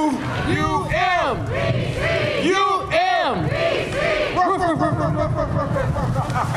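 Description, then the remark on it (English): A large crowd of people barks like dogs, loud, in a steady run of overlapping rising-and-falling yelps, with a chant breaking through the noise. The crowd is at a campus event at UMBC, greeting a speaker at the podium; the school mascot is a Chesapeake Bay Retriever. “And if you're wondering why everyone was barking, the school mascot is a Chesapeake Bay Retriever.”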